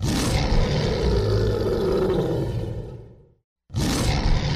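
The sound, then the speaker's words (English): A lion roars loudly, a deep rumbling bellow that fades out, then after a brief silence a second roar begins. No voices are heard. “And my question is, why do lions always roar?”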